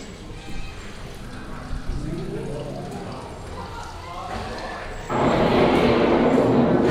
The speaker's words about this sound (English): Sounds like a Florida thunderstorm.